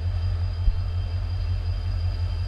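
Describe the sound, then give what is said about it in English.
A steady, unbroken hiss of static from an overhead 220 kV high-voltage power line sits over a deep, constant low hum, with a thin high whine running throughout and one brief soft thump; no one speaks. “We have a 220 kV line passing over here and we can hear the static of the lines. It's like a hiss.”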